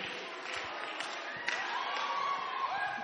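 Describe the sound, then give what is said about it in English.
An audience at a church gathering claps for actors who have just acted out a scene, steadily in a dense, continuous wash, with cheering and a few higher-pitched whoops rising over it in the second half. “Look, clap for them.”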